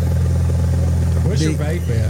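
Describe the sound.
A small airplane engine drones steadily at low taxiing power, a loud, constant low-pitched hum with a buzzing harmonic tone, while a voice briefly speaks over it.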